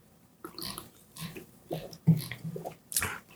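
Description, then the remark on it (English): Someone takes a few quiet sips of Canada Dry soda, with soft slurps, gulping swallows and a brief carbonated hiss near the end, with no one talking. “Speaking of which, another Canada Dry sip here.”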